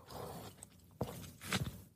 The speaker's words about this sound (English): I'm going to drink some coffee because I'm having trouble clearing my throat. Hang on.